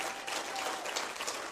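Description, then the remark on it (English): A church audience applauding together, a dense, steady wash of many hands clapping at an even loudness with no voices heard over it. “Come on, if you're going to clap, then let's do it wholeheartedly unto the Lord.”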